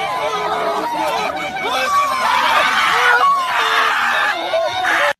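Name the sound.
crowd of people screaming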